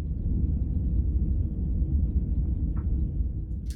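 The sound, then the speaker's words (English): A steady, continuous low hum of the ductwork and station heaters that keep a base warm year-round drones throughout, dense and rumbling in the bass with no voices, interrupted only by a couple of brief faint clicks near the end. “I don't know if it'll get picked up by the body cam recorder or a digital handheld, but there's a persistent low hum. It's from the ductwork and the station heaters that keep the base warm year-round.”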